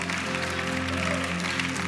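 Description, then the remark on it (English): A church audience claps in worship, a dense, continuous patter of many hands, with sustained musical tones humming underneath throughout. “Clap a little louder.”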